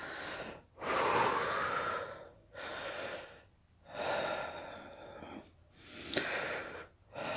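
Deliberate heavy breathing after a cold shower, loud: a steady rhythm of deep, forceful inhales and exhales with short pauses between, about five breaths in a row, with no talking.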